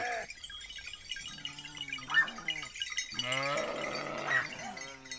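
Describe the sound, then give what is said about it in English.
A flock of 50 belled sheep being brought down for milking to a village above Carrara in the Marble Mountains, Tuscany, Italy, with repeated loud bleats over a steady jangle of bells, while a church bell rings in the background to signal a funeral. “Benito is bringing his 50 belled sheep down for milking to a village above Carrara in the Marble Mountains in Tuscany, as the church bell rings”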